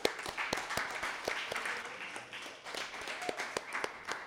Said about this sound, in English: So, nice round of applause for those boys.